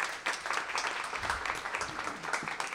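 An audience applauds to welcome a vice president of research and development for software automation to the hot seat, with dense, steady clapping that stays fairly even in loudness for a few seconds, a continuous patter of many hands with no voices standing out.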